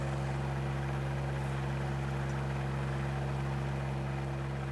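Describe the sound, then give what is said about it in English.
A powered auger drills holes to install a grape trellis in a community garden behind the UWF water tower. Its motor drones steadily, holding a low, even hum with buzzing overtones that stays loud and unchanging throughout, with no voices. “The day I showed up, an auger was steadily working to install a trellis for grapes.”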